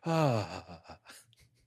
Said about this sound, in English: Gasp. Australian gasp, mate. Snakey gasp. Proper British gentleman gasp.